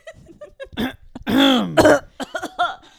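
Several loud coughs with a throaty, voiced edge, starting with short hacks and building into a longer, strained cough before trailing off in a few quick bursts.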